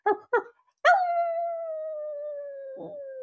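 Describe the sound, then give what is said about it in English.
A person imitates a wolf: two short yipping barks, then one long, steady howl that holds a single pitch and slowly sinks lower for over two seconds, fairly loud. “They love to howl. It goes howl.”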